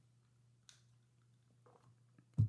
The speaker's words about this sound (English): Let's get a sip of coffee real quick.